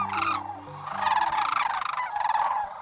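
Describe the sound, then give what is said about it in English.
A courting pair of sandhill cranes call together at sunrise on a southwestern marsh in late February, in loud, rolling, trumpeting bursts that overlap and repeat several times, with a faint low hum underneath at the start. “In the rosy glow of a sunrise on a southwestern marsh, a pair of sandhill cranes calls in unison.”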